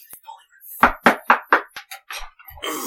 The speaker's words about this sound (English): I'm going to go up to his room and bang on the door.